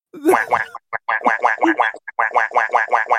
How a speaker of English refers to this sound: Quack, quack. What? What is that? That's the whack button.